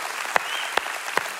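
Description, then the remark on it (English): A crowd applauds two pastors who preached, in a steady wash of clapping, with a few louder, sharper claps standing out at a regular beat. No one speaks. “Yeah, sure, you can clap for that. That's awesome. While you're clapping”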